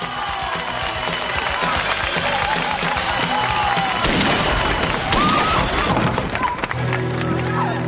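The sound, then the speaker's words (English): Gunshots crack out as a woman taking a bow is shot twice, a few sharp bangs standing out over a dense, roaring crowd's constant cheering and commotion that continues loudly throughout. “So yeah, gunshots,”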